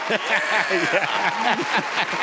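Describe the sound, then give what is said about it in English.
A crowd breaks into steady, dense applause, with cheering and laughing voices rising and falling through the clapping. “We welcome and appreciate your applause.”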